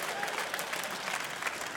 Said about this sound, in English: Because there's a whole bunch of really, clap for your imperfection.